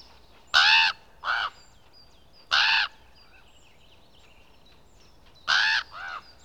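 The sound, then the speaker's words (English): Harsh, strident crow caws, starting distant and growing closer, ring out in three bursts, a pair, a single call, then another pair, overtaking faint background bird chirps. “A distant cawing joins, grows closer and strident, overtaking the other syllables.”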